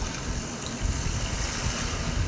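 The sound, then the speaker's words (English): Steady flowing water rushes continuously, a broad even wash of sound like a stream or creek, with no voices and a constant, moderately loud level throughout. “Listen to the water in the background.”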